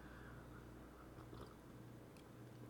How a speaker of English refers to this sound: I'm going to have a little sip of tea.